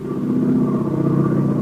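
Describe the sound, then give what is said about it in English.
A steady, droning aeroplane engine hums at a constant low pitch with a faint higher whine riding on top, holding loud and even throughout with no voices. “We bring you now the sound of an aeroplane.”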